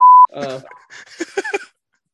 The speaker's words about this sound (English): Was that your beeping? Yep, those all the censored beeps of them cursing at him.